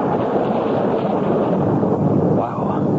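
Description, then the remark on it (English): A heavy rainstorm pours down on a car windshield, with windshield wipers sloshing the rain from side to side, in a steady, dense roar that holds at an even, loud level for the whole stretch, with a faint low rumble underneath and no break in the downpour. “Just slosh the rain from one side to the other.”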